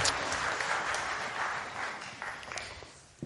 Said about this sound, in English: And we'll have a round of applause for our helpers. Thank you very much.